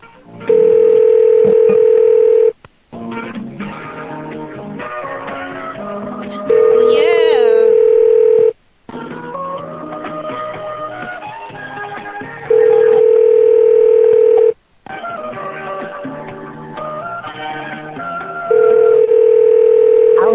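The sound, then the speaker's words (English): A steady, mid-pitched tone from a phone answering system, after which the caller is to state their name, sounds four times, each lasting about two seconds, alternating with stretches of busy, melodic hold music. “Please state your name after the tone.”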